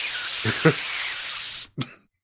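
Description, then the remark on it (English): A voice imitates a loud, steady hiss that holds for about a second and a half, with brief voiced bursts inside it, then a short second hiss after a quick break. “How loudly does he hiss?”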